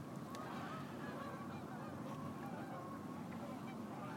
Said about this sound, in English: Can you hear the geese? Across the lake. Turn this way, it's better for the wind.